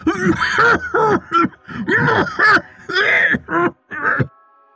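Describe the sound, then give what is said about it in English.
A voice acts out a fit of coughing and choking for a story character, the Draugnar: a run of strained, throaty hacks and gagging groans in uneven bursts, fairly loud, ending abruptly into silence. “Just then, the Draugnar began to cough.”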